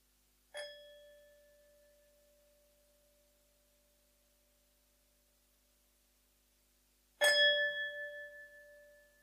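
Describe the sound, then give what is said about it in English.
A meditation bell is struck twice at the close of a meditation session, several seconds apart, each strike ringing out clear and loud before slowly fading into a long, shimmering tone, with no voices. “I will ring the bell, gong 3 times, then you can slowly come out of the meditation.”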